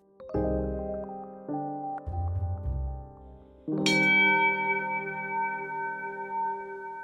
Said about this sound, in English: Bells are deceptively complex instruments. The sound of a bell is a trick of perception. A single note is the sum of more than 50 sounds, or tones. Of these, the human ear hears the 5 most powerful as the bell's note.